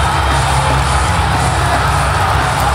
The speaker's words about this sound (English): Fighting off the NAK, he's come to Jack Chestnut's rescue! Bill, listen to this crowd!